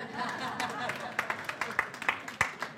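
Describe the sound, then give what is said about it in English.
An audience at a talk on the Christian faith claps in scattered bursts, sharp individual claps popping out over a steady murmur of crowd noise, growing more distinct and rhythmic toward the end. “You can clap for that.”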